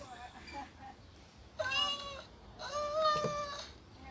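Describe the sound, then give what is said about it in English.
A cat meows twice, a short meow followed by a longer, drawn-out one, clear over faint background noise. “And then a cat showed up.”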